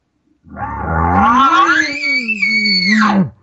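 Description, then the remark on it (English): A human voice imitates the bugle of an angry bull elk upset by another bull bugling in his area while he has a cow coming into heat: a low growling start rising into a long, strained, high-pitched whistling squeal that holds steady, then drops off abruptly, about three seconds in all. “Now, if an elk is upset because you're another bull bugling in his area and he has a cow coming into heat, you're going to hear him do more of something like this.”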